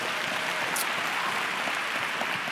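A church audience applauds steadily during a service, a dense crackle of many hands clapping at an even, fairly loud level throughout, with no voices heard over it.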